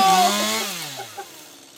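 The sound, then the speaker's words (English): A chainsaw, Mumbly's, roars loudly, then its pitch sinks and the sound fades as it winds down, with a couple of faint knocks near the end and no voices. “Mumbly's got a chainsaw.”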